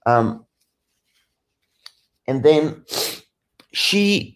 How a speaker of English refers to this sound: Sorry, just gotta blow my nose for a second.